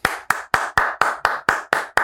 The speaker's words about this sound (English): I do the clapping just because like I try to give it a big intro and then, you know, there's this kind of anticlimactic, the whole thing, so.